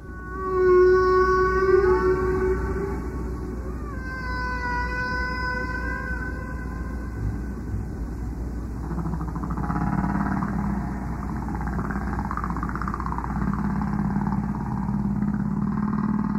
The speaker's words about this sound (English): That was Moth Prof Roger Payne's beloved whale tape.